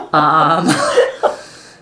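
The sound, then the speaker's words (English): A person coughs: a loud, throaty, voiced burst followed by a rougher breathy stretch, then a second shorter cough that fades into quiet. “excuse my coughing”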